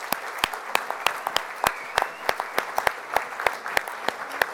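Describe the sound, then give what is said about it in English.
An audience claps steadily for Dr. Robert Cialdini, a dense patter of hands with sharp individual claps popping out irregularly above the wash, fairly loud and continuous with no voices over it. “I know we're all going to get a lot out of this time, but if you would please right now just join me, big, big, big round of applause for Dr.”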